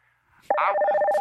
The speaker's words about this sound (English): I just played a phone sound effects because I think it makes people think, oh, it's a real show.